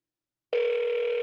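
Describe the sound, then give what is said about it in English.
After a brief silence, a telephone's ringback tone starts abruptly as an outgoing call to a guest rings, a steady, clear electronic buzz-tone holding at even volume with no voices over it. “It's ringing.”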